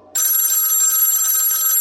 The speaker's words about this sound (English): Wow. Now, wait a minute. How can the phone be ringing when I'm already on the phone? Is this a new call waiting feature?